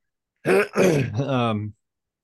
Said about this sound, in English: Sorry, I just had a massive coughing fit.